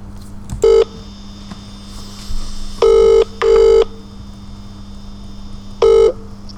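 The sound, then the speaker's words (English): A telephone ringing tone sounds through the line in short, steady buzzing bursts: one, then a quick pair, then another after a pause, over a faint constant hum. No one speaks. “Shall we give him a bell?”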